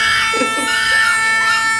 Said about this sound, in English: I'm selling monkeys. You want to buy one? This is what they sound like.